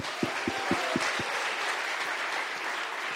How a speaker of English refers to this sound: So let's go ahead and give him a warm round of applause.